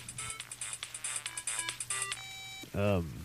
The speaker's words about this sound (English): That's when my phone rang.